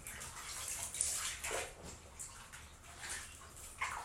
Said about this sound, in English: And there's all that noise in the background. That's my washer and dryer on the other side of this wall.